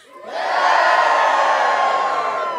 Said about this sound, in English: There is a cheer from the waiting women.